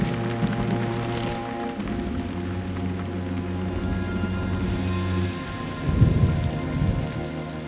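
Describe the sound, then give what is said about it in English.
Steady rain hisses throughout at night while low thunder rumbles roll underneath, swelling into a deeper, louder rumble near the end. No voices, just a dark, stormy ambience. “And so this was kind of a scene we put together to talk a little bit about ambiences, and you know, this is kind of a little fun Atmos thing with her wings, and it's a kind of nighttime thunder.”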